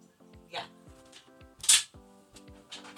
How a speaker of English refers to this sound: My roommate just came upstairs. She works downstairs, and my dog is so excited. She is just wagging furiously.